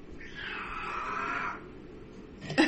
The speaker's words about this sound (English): And the cat was just giving his take on what he would tell his 13-year-old self.